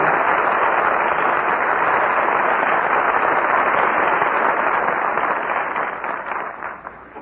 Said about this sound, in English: Curtain falls on my friend Flicka. And our very good friends, George Brent, Roddy McDowell, and Rita Johnson, answer your applause with a well-earned curtain call.